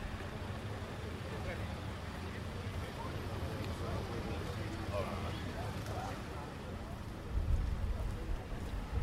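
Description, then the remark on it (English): Steady rain pours down over the Camp Nou football stadium in Spain, a dense continuous hiss with a low rumble underneath and indistinct murmuring voices, swelling a little louder near the end. “So, Camp Nou, it's all raining.”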